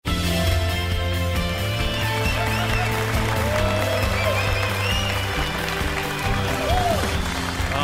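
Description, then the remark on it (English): Sustained spontaneous applause from the audience of a live program as it returns from a segment break, filling the whole stretch at a steady, loud level, with a dense wash of clapping and murmur and tonal sounds running underneath. “Beauty of the spontaneous applause that takes place when we come back from every segment.”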